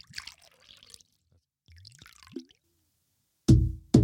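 Honey Jaeger liquor glugs into small shot glasses in a couple of short pours, one rising in pitch as the glass fills, followed by a loud knock at the end.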